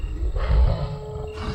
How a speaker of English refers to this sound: howls and growls filled the air behind him